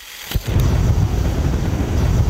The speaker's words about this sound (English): You might think you're hearing a jet engine, but it's actually methane leaking from the melting tundra in the Siberian Arctic that's been set on fire.